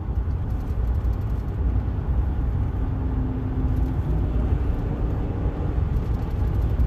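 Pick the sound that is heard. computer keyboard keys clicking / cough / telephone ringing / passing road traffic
passing road traffic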